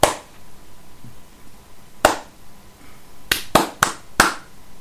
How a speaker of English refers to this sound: Heavy weighted claps. Weighted heavy claps. Distant, yeah. Ghostly.